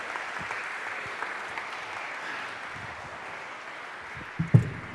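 A steady round of applause from a group, dense continuous clapping at an even level for several seconds, with a couple of louder thumps near the end.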